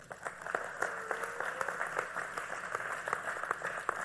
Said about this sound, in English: Somebody's coming up here. Y'all give her a hand clap.